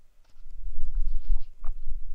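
A handful of dice clatter and tumble across a hard surface in a quick run of knocks and clicks, over a low background rumble.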